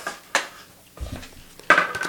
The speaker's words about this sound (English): I'm getting a card ready. You're rolling dice. That's what we're doing.